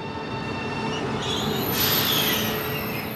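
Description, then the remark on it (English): A high-speed train on Spain's rail network rumbles steadily along the rails, a dense roar with a rising high-pitched hiss and faint wheel squeal midway through, no voices present. “He's going to see Spain's high-speed rail network for himself and ride some of the trains.”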